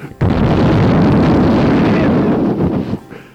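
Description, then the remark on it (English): A single loud, distorted roaring burst, made by two teenagers about 15 years old blowing hard into a microphone to imitate an explosion, starts abruptly, rumbles for nearly three seconds, then cuts off and fades. “making explosion sounds over and over again by blowing into a microphone.”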